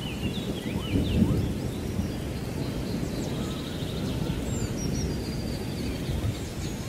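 Steady rain falls throughout, with a deep, continuous rumble of distant thunder underneath and faint bird chirps high above; no one speaks.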